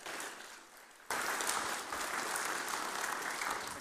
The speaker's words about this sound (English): So if you want to give them a round of applause.